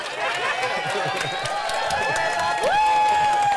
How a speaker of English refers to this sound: Don't cheer for that.